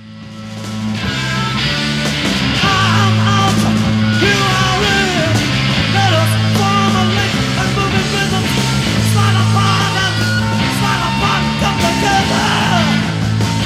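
A loud, dense live rock performance with heavy distorted guitars, a pounding bass line and crashing drums, plus shouted vocals riding over the steady, driving groove without a break.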